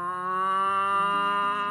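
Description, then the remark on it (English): A person imitates a cow moose call in a wildlife calling competition: one long, nasal, drawn-out moan that holds steady, then dips slightly in pitch, loud, with no other sounds around it. “And for the wildcard round, a drake mallard, a crow, and a cow moose.”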